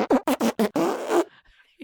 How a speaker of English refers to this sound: But hey, you're working the phones now, and we have a people call in and fart. So, do you have any stinky voicemails for us? I have some stinky voicemails for you.